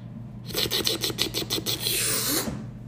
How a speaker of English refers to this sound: Not today. I'm going to pop me open a can of Raise Energy.